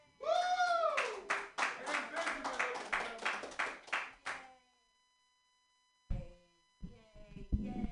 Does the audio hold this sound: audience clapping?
yes